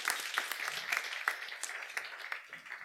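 An audience applauds steadily for a science fiction author introduced to give a talk, a dense wash of many hands clapping at a moderate level with a few sharper claps standing out, fading slightly toward the end.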